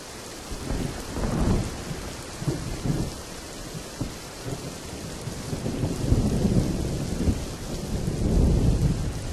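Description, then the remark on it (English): Steady rain patters on a roof while low thunder rolls and rumbles in waves beneath it, swelling louder toward the end, with no voices present. “The sound of rain hit the roof, and thunder was ominous.”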